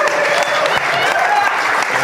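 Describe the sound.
Steady, dense audience applause fills the whole clip, a loud continuous wash of many hands clapping at once with a faint murmur of voices underneath.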